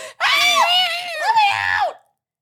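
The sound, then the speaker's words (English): A single loud human scream, shrill, held for nearly two seconds with a wavering, rising-and-falling pitch before cutting off into silence. “You have a great scream.”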